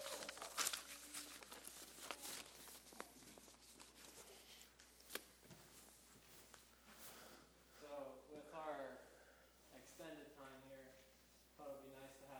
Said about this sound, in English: They're passing out the paper.